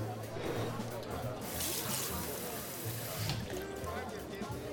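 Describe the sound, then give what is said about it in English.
Water is poured steadily into a glass at a bar, a continuous splashing trickle lasting several seconds with a faint low hum in the background. “Would you like some more? We've got plenty of water.”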